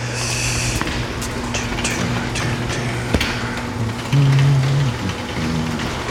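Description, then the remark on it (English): A roller door rattles open, a steady low mechanical hum running beneath a scatter of sharp metallic clicks and knocks, growing louder for a stretch near the end. “Okay, there's a roller door.”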